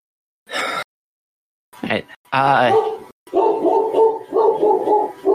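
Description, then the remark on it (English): A person imitates a barking dog, giving a few short, sharp woofs followed by a longer stretch of pulsing, growly vocal noises. “Apparently your move is to work like a dog. Your move is to turn into a dog.”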